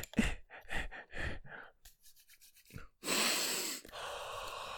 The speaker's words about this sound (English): That's how you get rid of it, baby. Sniffing the Purell. You just sniff it right up your nose, and it'll alleviate any symptoms.